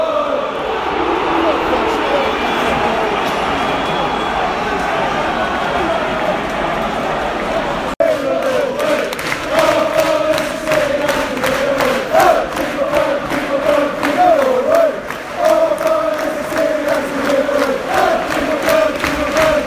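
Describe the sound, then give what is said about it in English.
Manchester United away fans at a football match sing chants en masse, a loud, dense wall of voices. Partway through, a fresh chant starts with a clear sung melody over rhythmic, steady clapping. “I should just keep this recording because it's song after song at the moment.”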